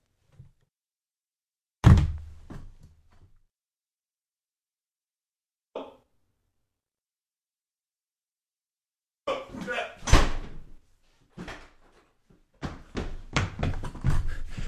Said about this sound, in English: Hold on. There's someone at my door.